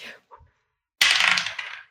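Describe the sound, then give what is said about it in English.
A sharp clatter of dice tumbling and rattling across a hard surface for under a second, fairly loud, after a few faint knocks; a six-sided die rolled for a willpower roll. “I'm gonna roll my heart dice.”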